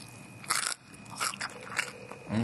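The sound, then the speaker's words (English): Loud crunching of a bite into crispy lamb crackling, several sharp brittle crunches in quick succession with no talking. “Okay. Hang on, let me have a go. Lamb crackle.”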